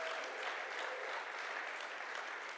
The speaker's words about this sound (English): Can I hear amen this morning, church? Can we clap for the Word of the Lord? Come on. Clap for the Word this morning. Come on. You can do that.